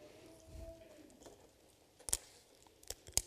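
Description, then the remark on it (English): Faint, crisp papery rustles of Bible pages being turned to Matthew 28 on page 811, a few short crackling bursts toward the end after a quiet, low hum, with no voices. “I hear the rustling.”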